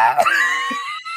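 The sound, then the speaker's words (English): A voice lets out a loud, piercing, high-pitched screech imitating a raptor's cry, sustained with a harsh trembling edge for about a second before cutting off abruptly. “Get that velociraptor screech level.”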